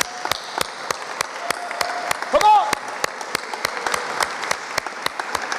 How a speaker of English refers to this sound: Salute and cheers to all the dads. The ones that are here. Yeah, can we give an applause to the dads?